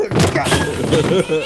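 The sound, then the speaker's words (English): A dog yelps in a string of short, high, pitch-bending cries amid a loud, cluttered burst of thuds and commotion. “That poor dog. Get the damn dog out of here.”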